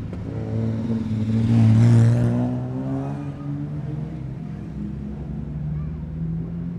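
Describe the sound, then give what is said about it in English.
A Ferrari racing car's engine roars, its note swelling loudly in the first couple of seconds as it approaches and then settling into a steady, slightly quieter drone that continues to the end. “Here comes the Ferrari.”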